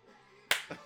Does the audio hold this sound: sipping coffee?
no